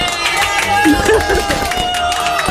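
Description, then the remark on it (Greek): A loud applause sound effect being played in: dense, continuous clapping from a crowd for a few seconds, with cheering voices and a few whistle-like tones mixed in. “Κάτσε ένα μισό λεπτάκι να βάλω χειροκροτήματα.”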